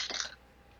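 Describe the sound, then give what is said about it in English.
A quick, brittle clatter of dice tumbling across a hard surface and landing on a 10, lasting about a third of a second before settling into near silence. No voices are heard. “That's a 10. That's going in dice jail.”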